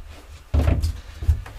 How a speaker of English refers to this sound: Come on, get in, quick. We're shutting the door. Come on, get in. Alright, that door's locked now. It's a lock-in.